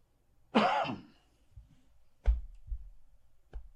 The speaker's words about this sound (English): Sorry. The cough was just going to happen. I've been trying to fight this thing the entire show